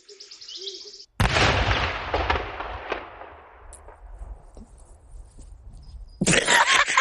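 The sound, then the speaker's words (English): Faint birdsong is cut off by a sudden loud explosion, a cow exploding on a field in video footage, whose rumbling roar fades slowly over several seconds, before another harsh burst of noise near the end. No one speaks. “And then one of the cows just explodes.”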